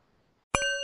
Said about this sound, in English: I invite you to join me in 30 seconds of silence for the animals, and we'll conclude with the sound of the bell.